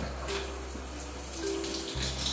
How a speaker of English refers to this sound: Right here, I'm just staring kind of at a blank wall, right? Just waiting for the shower to heat up.